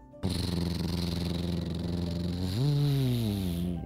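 pickup truck pulling up

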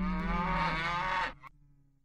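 cow mooing

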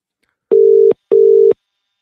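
telephone ringing tone

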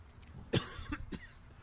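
cough

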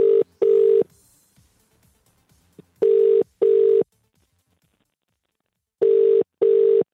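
outgoing phone call ringing

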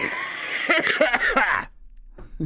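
a person coughing

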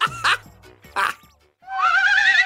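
horse neighing

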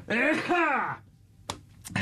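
sneeze

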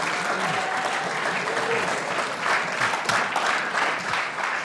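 audience applause

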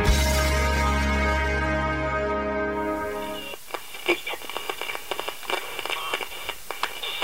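radio static

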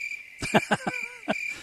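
crickets chirping sound effect

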